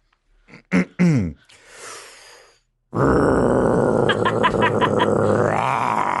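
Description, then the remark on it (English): A voice imitates a chainsaw: a few short grunting bursts, then a loud, sustained, rasping snarl for several seconds that revs higher near the end, alone. “Oh, that chainsaw needs to be looked at by a technician of some kind.”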